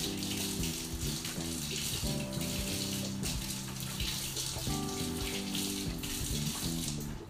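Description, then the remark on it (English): Tap water runs steadily and loudly for several seconds, with a continuous hissing splash and shifting hollow tones as something is rinsed under the stream while cooking. No one speaks. “So, give that a little rinse.”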